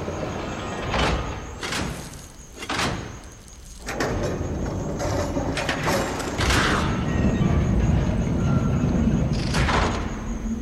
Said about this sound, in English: A moment later, the golden doors opened with a grinding sound that filled the air.